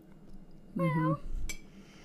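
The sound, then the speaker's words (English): A single drawn-out meow from Leo, a domestic cat, clear against quiet, followed shortly by a brief sharp click. “The cat wants to get on the podcast. Meow, meow.”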